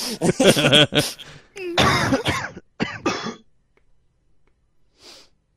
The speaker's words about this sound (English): Cacophony of coughs. Cough, cough.